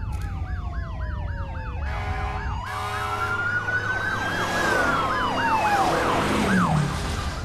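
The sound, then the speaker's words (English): Several police sirens wail and yelp over one another, loud, with a pitch drop suggesting they pass by, over a low rumble of traffic. “Where are those cop cars going?”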